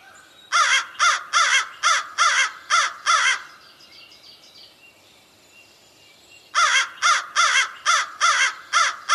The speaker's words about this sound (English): So that's American crow, that caw, caw, caw. You heard a whole family of crows, a whole family of them starting to get going toward the very end.